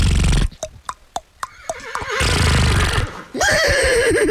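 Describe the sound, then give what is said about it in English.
A person imitates a horse, starting with a burst of breathy noise, then a series of sharp clicking clip-clop sounds and a loud, wavering whinny-like neigh, fairly loud. “You know, I will make horse noises if you would like while you are massaging me.”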